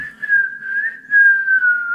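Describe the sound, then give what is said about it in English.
A person whistles in imitation of a bird: two long, steady mid-pitched notes with a slight waver, the second gliding gently downward, clear and fairly loud with no talking. “You go back in and the egg is still laying at the bottom of the tree and the bird is like...”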